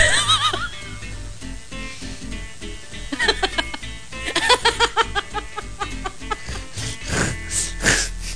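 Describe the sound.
A person gives a shrill, wavering imitation of a horse's whinny, followed by bursts of loud, rhythmic laughter, with voices chiming in over a low background.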